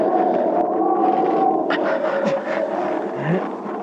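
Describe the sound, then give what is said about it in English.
A loud, steady howling mountain wind at about 17,000 feet, carrying fine powdery snow, a moaning tone sustained over a constant rushing roar, with a few brief gusting swells; no voices. “He was having a tough time breathing, and the wind had come up again.”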